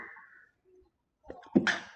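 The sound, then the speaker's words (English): A single sneeze bursts out: a short buildup of breathy sounds, then a sharp, loud explosive release that trails off quickly. “I have to sneeze.”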